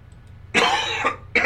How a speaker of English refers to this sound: And I do apologize. I've had a cough that I haven't been able to shake. Allergies have been kicking my ass the last couple of weeks. So I apologize for the cough.